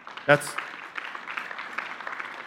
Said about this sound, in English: That's called the golf clap.